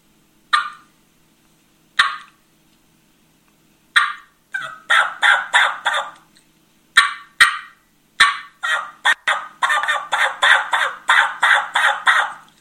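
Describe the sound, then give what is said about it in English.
A turkey mouth call imitates a gobbler: a few single, spaced clucks, then runs of deep, raspy yelps in rapid rhythmic series, loud with no talking. The caller hollows out the mouth to get a deeper, hollower sound. “That's what I do to try to get that gobbler yelp.”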